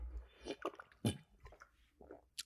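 Someone takes a quiet sip of water, with a few soft wet mouth and swallowing sounds spread over a couple of seconds and no talking.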